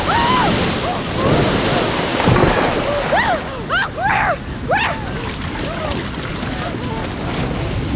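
Loud, steady rush of surging water with waves crashing and splashing throughout, while a few short, indistinct vocal cries rise briefly above the churn midway through.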